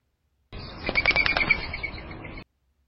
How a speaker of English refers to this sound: A dove's wing whirl is an example of a bird sound that can be used for identification that is not a song or a call. So let's listen one more time to these two birds' wing whirls. First, the Eurasian collared dove.